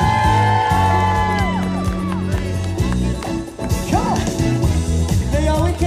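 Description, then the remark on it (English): A large concert crowd screams, whoops and cheers loudly and continuously, with individual high shrieks rising out of the roar and a steady band of sound underneath. “Well, ladies and gentlemen, if you're having a good time, let me hear y'all scream.”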